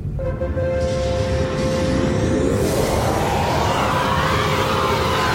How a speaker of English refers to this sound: It's a loud engine. I'm hearing that it's super loud.